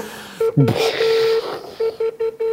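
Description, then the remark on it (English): An unusual electronic beep over a phone line: a steady mid-pitched tone, then a quick run of short, evenly spaced beeps, clear and fairly loud with no talking. “Sounds like a bomb's gonna go off.”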